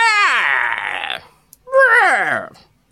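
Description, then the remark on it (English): A voice imitates an owl's screech twice, each a loud, strained, harmonic cry that slides downward in pitch, with a short pause between them. “And the owl screeches.”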